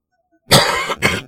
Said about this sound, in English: Sorry, I'm going to cough. I'm going to fucking sniffle. I'm still goddamn sick.